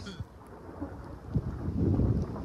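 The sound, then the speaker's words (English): Gusty wind roars across the microphone in a steady low rumble during a thunder snow storm in Erie, Pennsylvania, with snow falling, swelling louder toward the end, with faint bursts of voices underneath. “It doesn't come across as great because the wind is also blowing in.”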